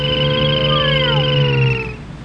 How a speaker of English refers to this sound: Hey, by the way, listen to this. I got the Jetsons car going right.